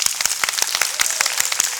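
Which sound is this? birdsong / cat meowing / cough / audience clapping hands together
audience clapping hands together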